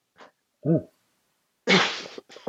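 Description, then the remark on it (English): A person clears their throat: a soft breath and a short voiced grunt, then a loud, rasping burst followed by a brief second rough hack. “Just need to clear my throat.”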